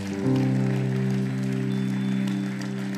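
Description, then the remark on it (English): A crowd claps steadily throughout, cheering on people who come forward to be prayed with, the applause spread wide and continuous beneath loud, sustained organ chords that hold the same harmony for the whole stretch. “Everybody's gonna cheer you on.”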